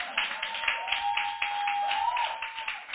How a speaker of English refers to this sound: Clap, clap, clap, clap.